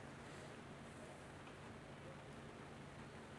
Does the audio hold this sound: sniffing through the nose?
no